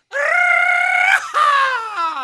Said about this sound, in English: All right, I've got to get it out. And listen, all of Duval, can we get the yell going right now?